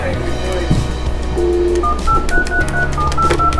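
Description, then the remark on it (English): A quick run of short electronic keypad beeps at shifting pitches, like buttons pressed on a phone, over a steady busy background hum. “turn your phone down”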